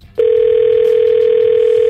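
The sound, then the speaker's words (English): A steady, loud telephone dial tone, heard as a call is placed to a sister, starts abruptly after a brief quiet moment and holds unbroken at a constant pitch, clear, with no talking over it. “And she's going to kill me, but let's get her on the phone right now.”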